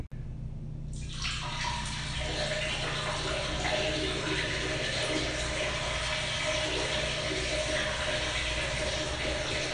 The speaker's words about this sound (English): Don't make them listen to you pee. Please don't. You're going to listen to me pee.